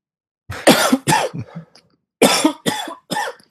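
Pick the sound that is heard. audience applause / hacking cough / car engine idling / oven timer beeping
hacking cough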